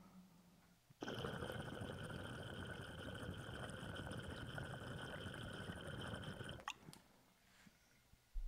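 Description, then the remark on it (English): Loud water bubbling through the percolator of a transparent mojito-colored glass pipe with a fat foot and a very open intake, a steady churning gurgle lasting about six seconds before cutting off abruptly, with quiet room tone before and after. “Like you can see like the perk bubbling and stuff.”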